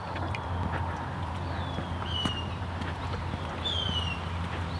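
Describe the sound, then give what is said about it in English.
A sharp-shinned hawk, hidden somewhere in the leaves of a tree, gives two brief, high, thin calls a second or so apart, set against a steady low rumble and scattered light clopping or shuffling noises. “Yeah, I think that sharp calls the sharp shin hawk up there, hidden somewhere in the leaves of that tree.”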